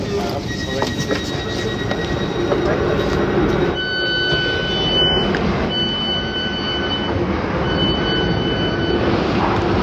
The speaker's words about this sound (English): I'm on Wimbledon Station now. Of course, my train. Of course, the train left me the furthest point from the lifts to get out of the station.